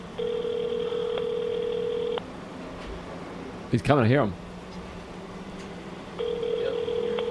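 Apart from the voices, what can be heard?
telephone call tones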